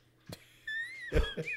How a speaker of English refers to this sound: That was an unintentional yawn. I promise you.